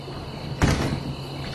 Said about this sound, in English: What's going on? Why did you close the door again?